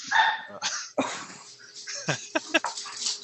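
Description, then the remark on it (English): Several small dogs in a pack bark and yap as they run by at dawn, in a rapid, overlapping flurry, sharp high-pitched barks tumbling over one another for a few seconds. “Apparently, there's a dawn chorus of dogs. Yeah, there's several dogs run by, small dogs in a pack.”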